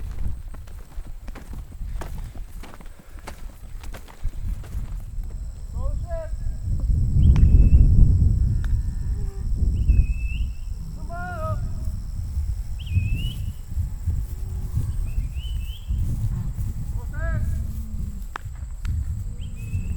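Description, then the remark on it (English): Cows slowly file past on their way to the barn as a thunderstorm approaches, not yet raining, their hooves clopping and shuffling steadily over the ground, with bird chirps dotted through the background and a low outdoor rumble throughout. “We stand off to the side, and the cows slowly start filing past us on the way to the barn.”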